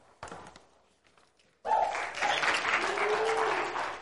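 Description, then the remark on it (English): An audience breaks into applause: after a few scattered claps, a sudden loud burst of sustained clapping from many hands fills the rest, with a few faint whoops mixed in. “This one's a better one to applaud for, though.”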